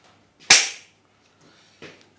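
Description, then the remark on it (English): A sharp, loud hand slap cracks, followed just over a second later by a softer second slap, with no talking. “You got to slap it.”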